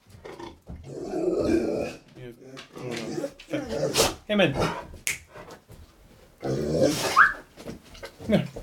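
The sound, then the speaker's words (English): A dog growls low in short bursts, mixed in with a man talking over it. “Do you disagree, dog?”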